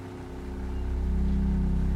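A boat engine churns steadily in a low, throbbing drone with a fast rhythmic pulse, out on a calm, flat sea on a silvery day, growing slightly louder and staying constant throughout, with no voices.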